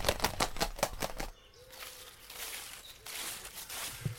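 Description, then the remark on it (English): A quick, steady run of six or seven whooshing wing flaps from an owl flying across a hiking path, followed by faint rustling background noise. “An owl, a majestic creature, flew right across our paths.”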